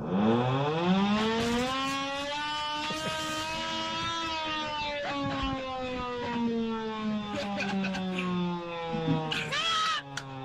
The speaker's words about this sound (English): I think we need the air horn. Yeah. Do it.